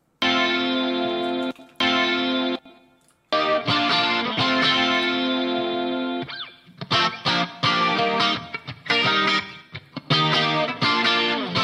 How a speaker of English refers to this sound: I took the DI track and I used Guitar Rig to put this sort of gritty sound on it. And then I doubled them together.